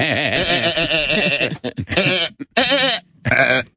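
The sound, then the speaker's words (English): A man's voice imitates a goat, letting out several loud, wavering, quavering bleats in close succession with short gaps between them. “…'s going to start talking like Goat Boy”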